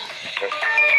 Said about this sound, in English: sorry, that was my alarm clock.